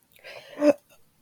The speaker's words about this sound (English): I had to burp, but now I don't.